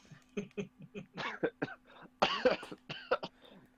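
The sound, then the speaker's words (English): A fit of coughing: a rapid series of harsh, raspy coughs and throat-clearing bursts, growing louder and more forceful toward the end, with no talking. “Still getting over the stupid cough that comes and goes randomly whenever it feels like it.”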